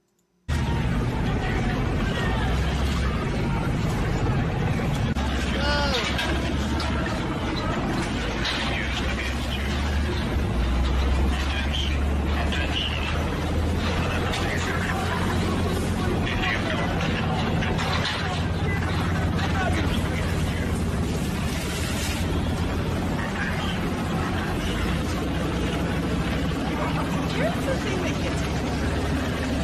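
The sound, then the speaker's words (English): A tense standoff with migrants at Poland's border: water cannons blast with a steady, loud rushing hiss over crowd shouting and a low engine rumble, continuous for the whole stretch. “And so we're having some water cannons and a few issues here.”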